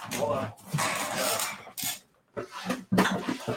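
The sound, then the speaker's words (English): A drawer made for tall boy trading card slabs, its cards filed in alphabetical order, is pulled open with a long scraping slide and rattle, followed by a few shorter clattering bursts as its contents clink and shift. “Golly, I can just grab a drawer.”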